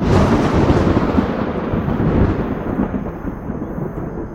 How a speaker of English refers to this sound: there is an explosion of purple energy that just flies upwards and crackles along the edges of the world storm. Hundreds and hundreds of miles of just this purple, violet lightning that seems to just encompass the sky and then smolders into nothing.